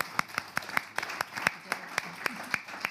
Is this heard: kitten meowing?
no